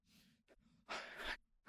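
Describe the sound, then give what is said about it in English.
Shaky breaths: a couple of short quivering intakes, then one long, loud, breathy gasp as the character Mrs. Skull gasps through tears, ending with another brief inhale. “And then this is when Mrs. Skull, like, gasps through tears.”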